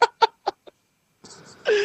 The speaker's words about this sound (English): Oh, fuck, man. A duck.